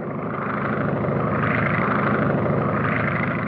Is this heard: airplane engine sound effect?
yes